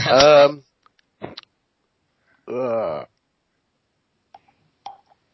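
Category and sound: human body sound, coughing fit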